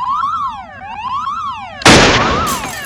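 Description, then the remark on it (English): A loud electronic alarm blares in repeated rising and falling wails, then a sudden burst of harsh, roaring noise crashes in and nearly buries it while the alarm keeps sounding underneath. “No, if that were true, there'd be an alarm.”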